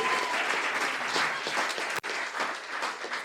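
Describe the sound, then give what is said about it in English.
A crowd applauds steadily as guests are introduced at an evening event, many hands clapping in a dense, continuous patter with a brief cut partway through before the clapping resumes at the same level. “There we are, round of applause.”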